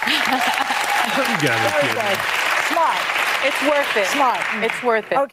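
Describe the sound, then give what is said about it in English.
An audience claps loudly and steadily for about five seconds to show they have had their third booster shot, with whoops and cheering voices rising over the dense applause before it cuts off abruptly. “Clap if you had your third booster.”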